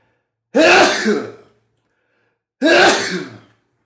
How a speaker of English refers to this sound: Excuse me, I need to sneeze.